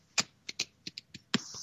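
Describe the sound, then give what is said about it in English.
A quick, uneven run of soft clicking keystrokes on a computer keyboard, about eight taps in under two seconds, quiet, with no voices. “Somebody's typing.”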